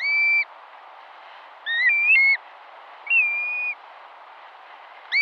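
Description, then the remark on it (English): Four clear, plaintive whistled calls of a black-bellied plover, each a slurred, drawn-out note, spaced about a second and a half apart over a steady, windy hiss. “Black-bellied Plover, Arctic Nester”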